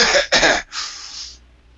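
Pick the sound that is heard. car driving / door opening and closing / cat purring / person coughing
person coughing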